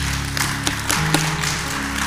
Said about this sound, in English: Clap your hands if you understand what I'm saying to you.